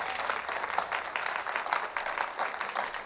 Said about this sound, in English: Now, I'm not sure if the 11 o'clock service has the clappers that the 9 o'clock service had, but I want to know, can you clap your hands this morning and just say amen?